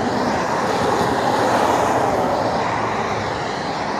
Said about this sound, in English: Yes, you heard that thunder? Oh, man.